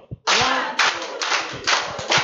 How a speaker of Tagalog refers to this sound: Palakpakan natin ang Diyos! Ayan. Pwede bang 12 palakpak ng pagpupuri sa Diyos? 12. Teka muna, sabay-sabay. Ready? Go!